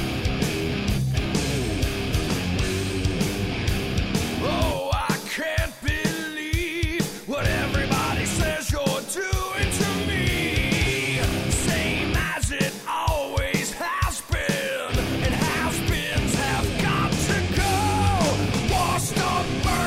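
A loud heavy metal song with dense, distorted guitars and steady pounding drums, the full band driving on without a break and what sounds like shouted vocals riding on top.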